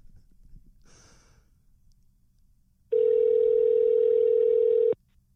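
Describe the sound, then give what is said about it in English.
A loud, steady telephone tone sounds for about two seconds, a single unbroken electronic hum heard while calling a home phone number, preceded by a soft breathy sniff and quiet background. “Home phone number. Let's hope we get my dad.”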